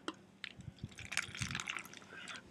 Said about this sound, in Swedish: Men du har typ ärligt att du fyllde hela muggen.